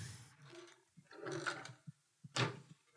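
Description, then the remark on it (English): A drawer in an ensuite bathroom slides open with a rattling, scraping rumble as someone checks it to clear it out, followed by a few short knocks and a final sharp clatter, fairly loud with no talking. “So I've got a lot of space in this bathroom, and I suppose I could clear out a drawer or two. Let me see.”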